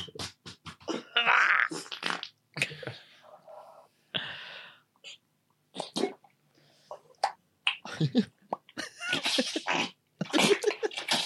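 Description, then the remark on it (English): A string of loud, sputtering fart noises played from a video, in irregular bursts, some short and some drawn out, with brief gaps of quiet between them and no talking. “It's when you see, like, a bumhole moving when it makes noise afterwards.”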